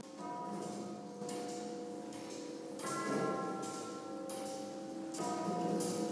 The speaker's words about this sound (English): I have come to the Museum of Contemporary Art, where I'm watching a very haunting clock singing its little tune. The clock is a work by Stuart Ringholt. He's an artist from Perth. It's a giant clock in the middle of the gallery, ticking away.